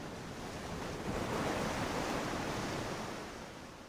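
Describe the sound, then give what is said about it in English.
Ocean surf washes against a rocky shore in a steady, broad roar that swells slightly in the middle and eases off toward the end, with no voices present. “I want you to be able to look at these beautiful rocks and not read things. No words, no images. Just say, wow, these rocks are really beautiful. This ocean is beautiful, and we're so grateful to have it.”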